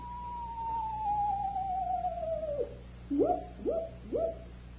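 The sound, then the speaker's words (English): A screech owl calls: one long, wavering whistle that slowly slides downward, followed by three short, quick hoots, fairly clear over a low steady background hum. “I haven't heard anything but a few crickets and that old screech owl”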